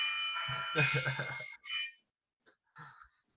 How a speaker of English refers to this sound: My alarm says take my heart medicine. That's all. Oh, I was wondering what the hell that was.